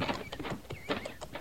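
A ridden pony's hooves clip-clop in a quick, steady rhythm, moderately loud, with several hoofbeats landing in rapid succession and no one speaking.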